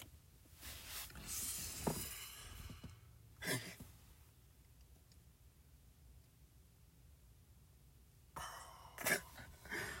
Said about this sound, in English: Was that a burp?